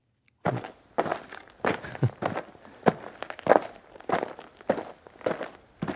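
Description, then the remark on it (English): Steady footsteps crunch over dirt, about a dozen gritty steps at an even walking pace, each a short scuffing thud, with no voices. “No, that was like walking like in like a dark alley where there where was like dirt on the ground.”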